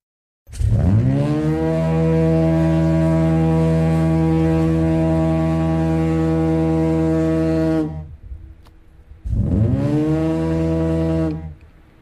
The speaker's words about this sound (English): So when Marconi was here, that is the foghorn he would have heard? Oh, yes. Oh, yeah, in Marconi's time, oh, yes. Mm. That's a compressed air, not like the new things today.